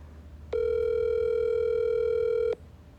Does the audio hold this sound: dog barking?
no